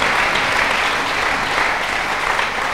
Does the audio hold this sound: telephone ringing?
no